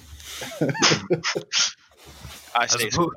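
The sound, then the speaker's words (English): A person imitates a raven's distinctly Australian squawk, several harsh, raspy vocal bursts, with some voiced, talk-like sounds before and after. “It's a distinctly Australian squawk.”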